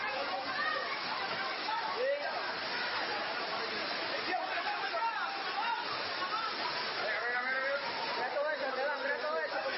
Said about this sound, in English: I've got a video here. We hear flooding.